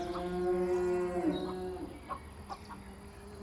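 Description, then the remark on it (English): A single long, low moo from an old cow named Molly drones for nearly two seconds, steady, then trails off into quieter farmyard background with a few faint bird-like chirps. “There's the old cow.”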